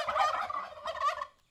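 Giant turkeys gobble in two quick, warbling bursts, one right after the other, fairly loud, with no voices around them before the sound cuts off.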